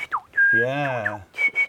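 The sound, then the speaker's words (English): A person whistles a short, melodic birdlike phrase imitating an Australian butcherbird's song, with clear sliding tones and a few quick chirpy notes, fairly loud, with a brief voiced hum underneath. “There's the butcher bird. You know the butcher bird?”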